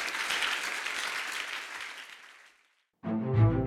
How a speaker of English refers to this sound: Clap your hands.